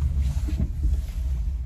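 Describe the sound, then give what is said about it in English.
A steady low-pitched rumble fills the cabin of an electric car with its motor running, continuous and fairly loud with slight fluctuations and no voices. “Okay, and then we'll shut the car off, and then we'll have a cold one, and I'll talk about trading some more, and we'll wrap it up.”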